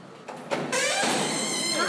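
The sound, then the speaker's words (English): The door to a property room slides open with a loud, continuous rolling rumble and scrape that swells after a short thump and carries steadily to the end. “Pound on that door back there.”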